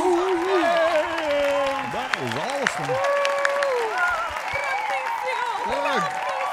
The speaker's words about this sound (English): The crowd erupts with a standing ovation.